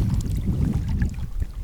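Gentle freshwater waves lap and slosh against rocks in a steady, low rumbling wash, with irregular small splashes and a gusty, breezy hiss, no voices present.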